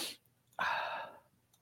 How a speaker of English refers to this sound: I'm about to sneeze too. I'm sorry, guys.